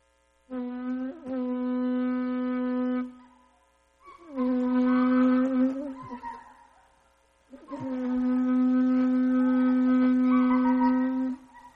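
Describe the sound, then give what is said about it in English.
A shofar blown in three loud, steady blasts with no talking: a low brassy horn tone that bends at the start and end, the second blast shorter and wavering, the last the longest. “And so they blow the shofar, and it means come on in and pray.”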